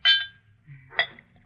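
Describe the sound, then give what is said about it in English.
A drink being poured into a glass: a bright glassy clink, a brief low trickle, then a second sharper clink of bottle against glass, with no talking. “That reminds me, Effie, pour me a drink.”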